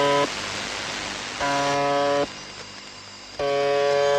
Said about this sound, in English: Ew. That was just someone leaving their cell phone on the table. That's horrible. I hate that one.